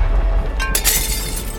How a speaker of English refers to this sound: Above the kitchen sink, the window broke as a tree branch pierced through the window pane.